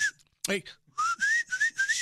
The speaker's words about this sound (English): I have this chip between my teeth. It makes me whistle between them.